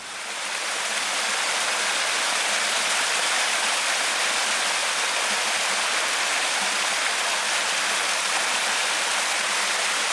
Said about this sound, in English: So it isn't just a myth that being near running water is you know, that makes you happy. It really does.